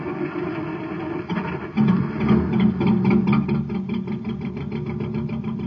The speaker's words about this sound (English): But you hear that? The driver's filling up the tank with some super fuel. Something's gonna happen now.